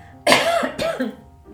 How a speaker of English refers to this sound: I'm going to cough, I'm afraid.